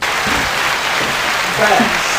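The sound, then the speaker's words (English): A live audience applauds steadily, a dense wash of hand claps filling the room at a fairly loud level, with faint voices murmuring underneath near the end. “Hand claps going on.”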